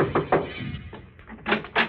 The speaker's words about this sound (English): One night, I saw a big house shining in the moonlight. I decided to take a chance. I knocked at the door.